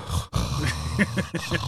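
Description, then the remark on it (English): A person imitates their own heavy breathing into a microphone, a few rough, breathy huffs in quick succession with no words spoken. “And like that's one thing listening back, I could hear us breathing. Like when you're talking, I could hear me just going.”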